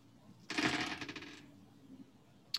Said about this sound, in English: Dropped my dice.